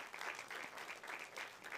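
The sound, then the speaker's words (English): A crowd applauds steadily for community leaders, dense overlapping claps forming a continuous rustling roar with slight surges in intensity, no voices standing out. “Can you give it up for our awesome leaders that actually invest in community?”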